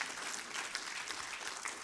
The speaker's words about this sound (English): So applaud the Lord.